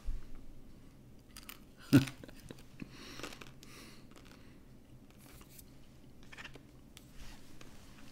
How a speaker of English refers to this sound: Hopefully you guys can't hear me chewing.